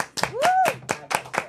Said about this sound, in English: Now, wait a minute. While you on that stage, let's clap it up.